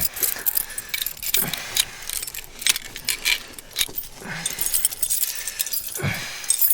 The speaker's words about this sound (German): die Schlüssel. Hoffentlich passt einer. Es sind so viele.